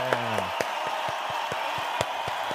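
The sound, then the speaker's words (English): Steady, evenly spaced hand claps, about ten in a row, fairly loud, like one person applauding alone, with a brief trailing voice at the very start; applause for the Steelers' draft. “There you go. That's some applause.”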